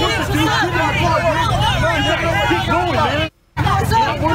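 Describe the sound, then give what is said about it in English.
A loud crowd of Antifa protesters outside a Trump rally, many voices shouting and yelling over one another at Trump supporters in a truck, with a low vehicle engine rumbling underneath and a brief gap of silence near the end. “And you can see that they begin to shout at the Trump supporters.”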